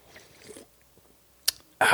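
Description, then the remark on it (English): Someone sips Waterloo carbonated water: a short, sharp burst is followed by a loud, fizzy slurp that runs to the end, after a stretch of faint, quiet rustling. “And sipping on my sweet, sweet Waterloo.”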